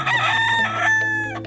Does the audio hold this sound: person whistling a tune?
no